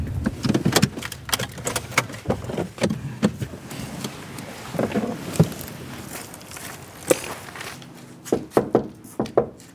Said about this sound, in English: While I was knocking on the door